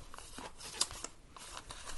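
Crisp rustling and crinkling of small slips of paper with feel-good notes written on them being handled, with a sharp snip-like click partway through and soft scraping continuing throughout; no one speaks.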